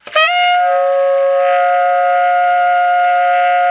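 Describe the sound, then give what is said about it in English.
A single sustained low-register tenor saxophone multiphonic, loud and steady with a quick attack, several tones sounding at once in a buzzing, horn-like chord that holds for a few seconds, played alone. “Here's another really weird low one that's kind of in that same register and is equally strange.”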